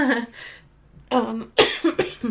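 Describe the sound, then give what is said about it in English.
A person at the end of a cold coughs repeatedly in a loud fit, with a few harsh bursts clustered together after an initial cough and a short pause. “Oh, here comes that coughing fit.”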